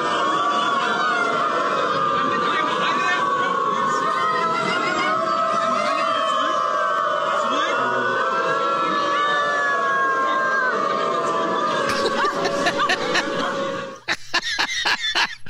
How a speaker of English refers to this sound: Hundreds of humans who identify as dogs have gathered in Berlin to howl and bark together. Here's a quick clip of the estimated 1,000 people who identify as dogs communicating with each other.